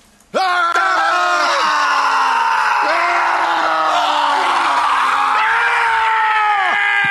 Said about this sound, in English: My favorite scream is the soldier. Yeah. It's just out of control.